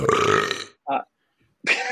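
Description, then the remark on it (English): A loud, drawn-out burp, rough and throaty, followed by a short vocal sound and, after a pause, another brief burst of voice. “I didn't expect burp in there.”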